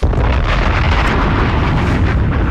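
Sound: bomb explosion sound effect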